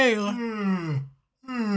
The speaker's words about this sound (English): Well, it's an exhalation, isn't it? You can't exhale for 5 minutes. Is it? I thought it was an inhalation. You made me want to yawn again.